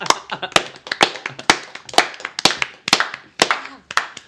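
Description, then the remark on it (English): Loud, heavy hand claps land in a slow, steady rhythm, about two per second, with a faint voice murmuring between them. “Those are Wookiee claps.”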